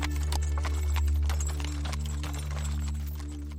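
Horse hooves clip-clop in a steady rhythm of sharp, bright knocks over a constant low rumbling drone, with no voices present.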